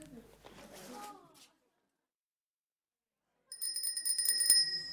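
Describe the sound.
A bicycle bell rings loudly, a bright metallic trill repeated rapidly for a couple of seconds, following a brief stretch of voices and then a pause of silence.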